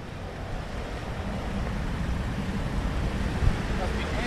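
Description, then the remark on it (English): A steady low engine rumble mixes with washing water noise as a ferry arrives at an island dock with waves lapping around it; the sound stays continuous and fairly loud throughout. “The only guy getting off the boat with me.”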